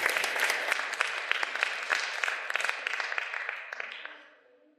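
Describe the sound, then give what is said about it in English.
A crowd breaks into steady applause, many overlapping claps forming a dense, bright patter that holds for a few seconds and then gradually thins and fades away. “Give those folks a warm round of applause, everybody.”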